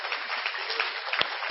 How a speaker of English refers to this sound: She deserves a round of applause for that.